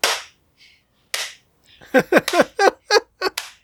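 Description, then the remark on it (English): Two sharp, sparse claps ring out, then a quick rhythmic run of seven punchy beats that sound partly voiced, as if a voice is imitating a clapping rhythm, fairly loud; an imitation of a crowd-pleasing clap routine by wrestlers in ECW, which Joey Styles called out on the mic. “And Joey Styles would scream into the mic, "They're giving us the clap!"”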